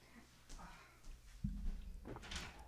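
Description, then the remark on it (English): A door is pulled open partway through to let a pet in, with a low thump followed by a brief scraping rumble, against faint background noise. “Let me just let him in and see how that goes.”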